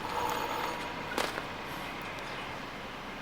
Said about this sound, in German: wir klingeln und gehen ins Haus.